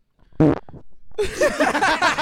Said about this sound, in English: Dude, you just farted on the air, literally.